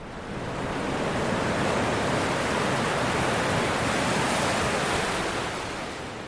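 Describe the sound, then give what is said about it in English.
Steady roar of ocean surf washing onto the beach at Whatipu, Auckland, a broad, continuous rush of breaking waves that swells in gently and fades slightly at the end, with no voices. “Strong rips or currents, large waves, deep holes, unstable cliffs, concealed water waves.”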